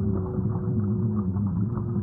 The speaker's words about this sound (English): The grunting. That sounds like a minke whale. That little digga-digga-digga.